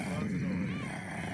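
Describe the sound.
A person growls like a dog, a low, rough, continuous rumble held steadily for over a second with a gritty, buzzing texture and no words.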